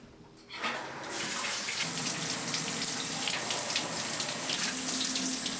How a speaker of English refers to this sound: I've been watching you take a shower for the past 40 minutes. Think of all that water you're wasting.